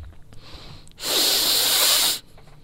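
A single long, forceful sniff of perfume on pajamas, a breathy rushing inhale lasting about a second, with quiet background before and after and no talking.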